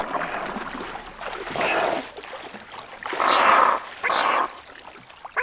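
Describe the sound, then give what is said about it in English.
A slowed, pitch-lowered bird call turned into raspy, creature-like squawks and growls meant as a baby tyrannosaur, heard as a few loud, harsh bursts with short pauses between them, no talking. “And with other clips like this, we tried to make believable baby tyrannosaurs.”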